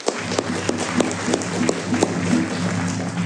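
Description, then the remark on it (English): An audience claps steadily, a dense wash of hand claps with sharper beats landing at a quick, even rhythm throughout, moderately loud with no voices standing out. “I've been advised that after this clapping, some of you may be a little bit famished.”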